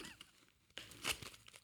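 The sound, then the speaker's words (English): Quiet crinkling and rustling of foil as a Terry's chocolate orange is opened, a few soft crackles building to a sharper, brighter burst of crinkle midway before trailing off into lighter scattered rustles. “just opened a Terry's chocolate orange.”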